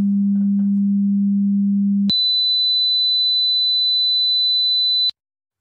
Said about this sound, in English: those two tones should be perceived fairly differently. And I'm going to do it again because I want to see what the Luft's meter shows us on these two tones. And you see the Luft's meter shows us about a 6 dB difference.